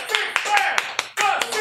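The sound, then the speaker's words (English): Audience applause for the film Old School, chosen by audience vote: a dense, steady wash of clapping with sharper claps standing out every fraction of a second, and excited voices shouting and cheering over it, fairly loud throughout. “Ladies and gentlemen, a round of applause for Old School.”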